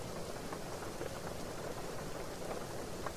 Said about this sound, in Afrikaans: Dan sit ons maar vir eers so en luister vir die reën.